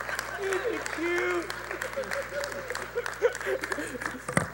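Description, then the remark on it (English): A crowd claps steadily throughout, a dense patter of many hands, while scattered voices whoop and shout over it; a sharp louder burst of clapping comes near the end. “Let's give him a hand here real quick.”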